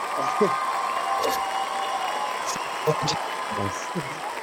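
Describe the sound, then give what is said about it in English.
A live audience cheers and applauds the return of a co-host in a steady, dense wash of clapping, with scattered shouts and voices rising through the noise for several seconds. “I really appreciate the live audience pulling it together like that.”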